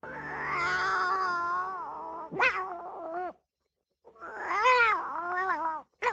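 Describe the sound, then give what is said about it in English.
A cat squeal sound effect: a cat squeals and yowls loudly in long, wavering cries, two drawn-out bursts separated by a brief silence, with no one talking. “A squealing cat.”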